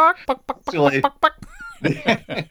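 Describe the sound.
A person imitates a chicken, letting out a quick run of throaty clucks followed by a short squeaky, whistle-like note and a few more voiced bursts.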